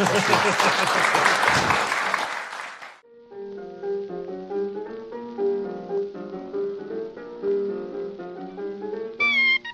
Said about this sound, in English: Give them a hand, please. Cheers.